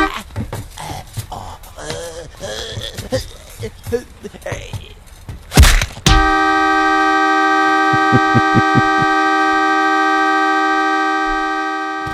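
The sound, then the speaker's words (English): Frantic shouting voices on a high school bus as the driver is beaten give way to a loud, sustained horn blast that holds a steady, brassy pitch for about six seconds, with a few brief stutters partway through. “I just love the intermittent horns all the time.”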